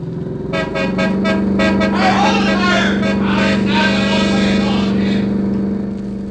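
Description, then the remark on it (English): A car engine drones loudly and steadily as the vehicle drives on through past a stopping car ahead, with a series of short, sharp horn toots at the start and a louder, dense rush of traffic noise in the middle. “The stopping car is ahead. I'll try to drive on through.”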